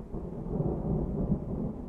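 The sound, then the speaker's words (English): A deep, steady rumble of thunder from a thunderstorm over a cornfield in the countryside rolls on without a break, heavy in the low end and fairly loud, with a faint hiss of rain behind it and no voices. “there's something very zen about sitting in a cornfield with a thunderstorm around”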